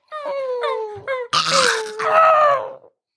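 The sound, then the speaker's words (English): During a role-playing game, a voice imitates a dog named Vac whimpering and yelping as it is crushed: a few high, falling whines, then a strained, raspy yelp and a final drawn-out whine, loud, with no other talking. “He starts whimpering and yelping.”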